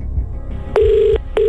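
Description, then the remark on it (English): A phone rings with an electronic warbling tone as a contestant is called and must answer within five rings: one long burst, then a second beginning after a short gap, loud over a low background rumble. “if they awake and answer their phone within 5 rings”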